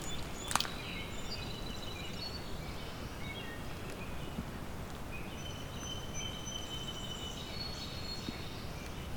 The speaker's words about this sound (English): And there's a brown creeper song now behind me.